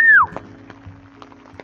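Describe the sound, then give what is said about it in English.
A person whistles to call a dog named Roo: a single short whistle slides quickly downward in pitch, loud but lasting only a fraction of a second, followed by quiet background rumble and a few faint knocks. “Oh, I can't even whistle.”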